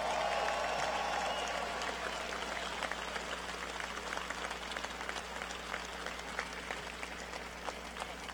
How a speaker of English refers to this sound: As someone who had the experience of wearing a hard hat for a short period of time many years ago, how about a very loud round of applause for all of the tradespeople who built Fiserv Forum?